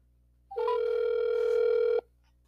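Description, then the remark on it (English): A telephone ringing: one steady electronic ring tone, about a second and a half long and clear, starting and stopping abruptly with no voices around it. “Let's get him on the phone and get this podcast rolling.”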